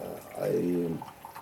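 Coffee pours into a cup in one short stream, its gurgling tone rising in pitch as the cup fills, then trailing off into faint background noise.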